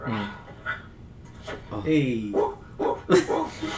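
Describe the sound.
A man imitates a dog, making a handful of short, uneven voiced barks and yips with a whiny, stretched sound in the middle.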